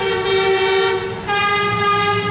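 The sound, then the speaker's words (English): Truck horns honk loudly, one truck honking at another: a long, steady blast, a brief break, then a second sustained blast, with no voices. “No honking here. One truck honking at another.”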